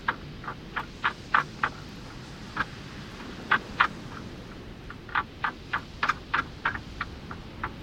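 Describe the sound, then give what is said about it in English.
Dry wooden ribs of a dead saguaro clack against each other in uneven bursts, sharp hollow knocks coming singly and in quick clusters over a steady low rush of wind. “The elongate ribs of the woody skeleton of a dead saguaro, banging against one another when hit by wind gusts, a natural wind chime.”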